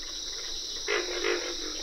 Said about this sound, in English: Pig frogs make the loudest grunts in this pond in the Okefenokee National Wildlife Refuge in Georgia.